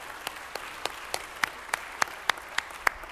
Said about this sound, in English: And that's what we're here for. Amen. Let's clap for that.